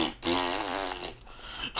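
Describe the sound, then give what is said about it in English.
A loud, buzzy fart noise, put over a leaked music track so the song can't be heard, stretches for over a second, its pitch wobbling and sputtering before it trails off with a final short blurt. “Whoever leaked it, they decided to put fart noises on every track just to make sure no one can hear it.”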